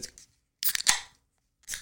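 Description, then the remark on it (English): A bottle of blonde beer, 5.2% alcohol by volume, is opened: short scraping clicks of the cap, then a sharp pop with a bright hiss, followed by another brief burst. No one speaks. “Ooh, a little pop. A little pop.”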